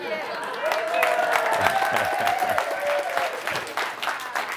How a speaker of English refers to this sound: I'm really proud of you guys. Yeah, a few. Where's the big applause there?